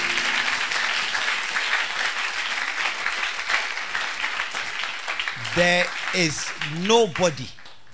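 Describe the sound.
Sustained applause from a crowd, a dense crackling wash of many hands clapping for several seconds, then a voice begins speaking loudly as the clapping tapers off underneath.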